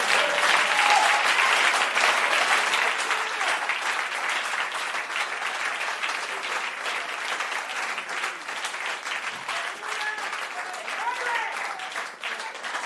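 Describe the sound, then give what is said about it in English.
A church audience applauds steadily for the whole stretch, clapping for the Messiah during a service, a dense wash of many hands clapping at once, loud at first and easing slightly but never stopping. “Let's keep on clapping for him.”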